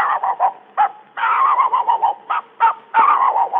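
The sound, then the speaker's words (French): A human voice imitates a dog, giving a quick run of sharp, yapping barks and longer growly whines, loud, with short pauses between bursts. “Mesdames et messieurs, voici les quelques cris d'animaux que j'ai pu retenir en faisant une visite au jardin des plantes. Voici d'abord le chien.”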